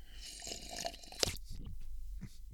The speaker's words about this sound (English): Yes, rule one of Fight Club, our podcasting club, is don't slurp your coffee during a recording.